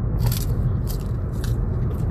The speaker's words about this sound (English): What does that sound like? That sounds like me eating an ice cream cone right next to the microphone. Just so you can hear the little snap, crackle, pop.